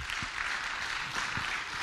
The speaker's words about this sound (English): Come on, would you give the Lord a good round of applause today?